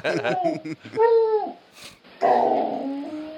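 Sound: dog making noises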